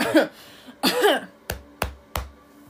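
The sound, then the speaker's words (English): Someone fakes a cough: two drawn-out, voiced throaty bursts followed by three short, sharp coughs in quick succession, with no talking. “A fake cough.”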